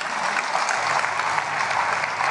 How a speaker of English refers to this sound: Clap for him.